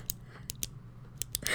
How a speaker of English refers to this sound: Here's a pen click.